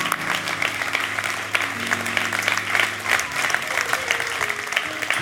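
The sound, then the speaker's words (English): An audience claps steadily for several seconds to give God praise, dense overlapping hand claps making a loud, continuous patter, some faint voices underneath. “Come on, clap your hands.”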